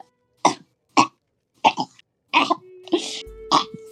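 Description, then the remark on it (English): A voice imitates coughing with about six sharp, close-up coughs in an uneven series, the last few rougher and more throaty, with a faint steady hum underneath toward the end. “He falls to the ground. And he's like coughing.”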